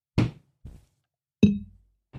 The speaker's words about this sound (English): Can you cheers me? Yeah. So before we go on. Cheers, Matt. Pink. That was the clink.